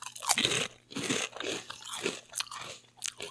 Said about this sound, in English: Well, this is going to be very crunchy when it... Let me see. Let me chew into it.